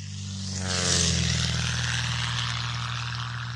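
A propeller airplane engine drones steadily at low taxiing power after landing, following another plane toward Alpha Echo, a loud buzzing hum with a brief swell of whooshing noise early on. No one speaks.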